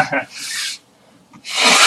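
Two breathy sneezes from a man with a cold, each a hissing burst of air, separated by a short quiet pause.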